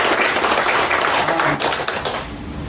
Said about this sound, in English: And let's just give God one more loud round of applause. Amen. Praise the Lord.